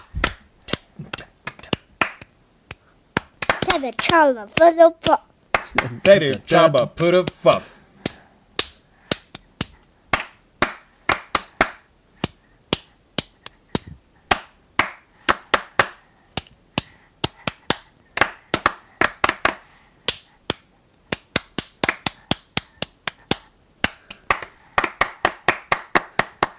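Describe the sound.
Rhythmic hand clapping from three people: one sets the rhythm with sharp smaller claps while the other two follow with fuller, louder ones in a steady interlocking pattern, with brief vocal noises and a few words near the start.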